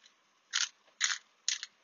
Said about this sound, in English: We're going to put a little more salt, this time with the grinder, a little more pepper.